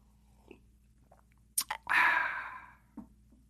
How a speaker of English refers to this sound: Excuse me while I sip out of my brand new fucking Me Right Now mug.